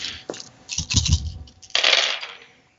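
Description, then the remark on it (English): Dice clatter and tumble across a hard surface in a few bursts of bright rattling, the last roll the loudest before it skitters to a stop and fades out. No voices. “All right, give me a roll.”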